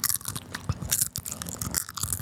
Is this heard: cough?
no